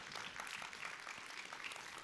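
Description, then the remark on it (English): A crowd claps steadily in response to news that donations raised over recent weeks, a dense patter of many hands forming a bright, continuous wash of applause at even loudness, with no voices over it. “You can clap for that.”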